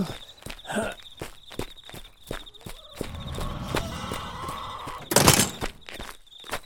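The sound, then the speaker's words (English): Steady footsteps thud along at a quick walking pace as people hurry into a barn, followed by a loud, heavy slam of the barn door being closed near the end, then a few more quiet steps. “Quick, into the barn. Yo, get on in and I'll close the door back.”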